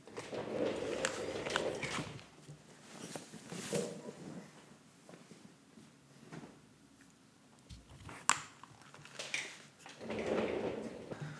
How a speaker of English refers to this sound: I also scooted my chair back before I took my shirt off, so the sound of me taking my shirt off doesn't sound like a rolly chair rolling across a wood laminate floor.